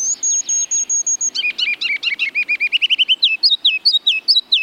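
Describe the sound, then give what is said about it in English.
A ruby-crowned kinglet sings alone, clear: thin high notes open into a rapid run of bright repeated chirps, ending in loud, bouncy descending phrases. “ruby-crowned kinglets are leaving the northern evergreen forests where they nest on their way to milder climates.”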